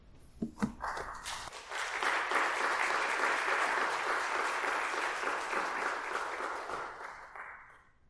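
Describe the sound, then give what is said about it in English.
A church audience at a Father's Day service breaks into sustained applause for the first speaker, a dense wash of many hands clapping that holds steady for several seconds before tapering off at the end. A brief voice is heard at the start. “That's the first time I've ever had applause before I said it.”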